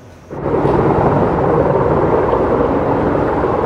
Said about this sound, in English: East of 100 Mile House, an aerial attack. A heavy lift helicopter that can haul more than 1,600 gallons of water, unloading it all on a growing wildfire south of Canem Lake.